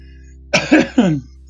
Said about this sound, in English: And with the coughing, it's still going on.